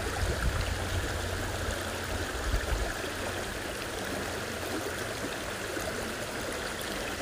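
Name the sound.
water flowing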